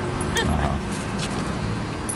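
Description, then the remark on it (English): A frightened female dog, scared by a microphone, gives a short, high-pitched yip followed by faint whimpering over a steady background rumble with some indistinct voices. “is officially scaring the dog.”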